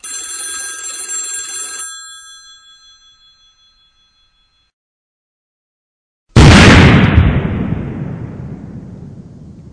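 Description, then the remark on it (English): A bright electronic telephone ring sounds for about two seconds and fades, then after a pause a loud, booming explosion sound effect bursts in and rumbles away with a long decaying tail. “I'll tell you once, I'll tell you 1,000 times, don't press that button when people call in. It makes their phones explode.”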